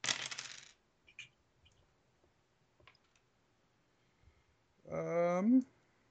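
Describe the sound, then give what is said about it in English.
A quick, bright clatter of dice tumbling across a hard table, followed by a few faint scattered clicks as they settle, then a person begins speaking. “Hot dice. 12. Hot dice.”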